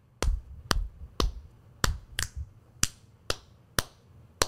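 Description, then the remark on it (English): A steady beat of crisp finger snaps, about nine sharp clicks at an even, moderate tempo, with no talking over them. “All right, so snaps and claps.”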